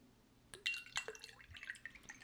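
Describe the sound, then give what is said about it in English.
Luc Belair Rosé wine is poured from a bottle into a glass: a quick splash, then a bright, bubbling trickle with clinking liquid tones that fade after a couple of seconds. No one speaks. “I need to pour you a little bit more.”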